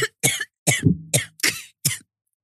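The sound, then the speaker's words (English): A burst of loud coughing, about six harsh hacks in a quick irregular run, with a brief throat-clearing rasp in the middle and short silent gaps between. “I can't believe he's making you cough like that.”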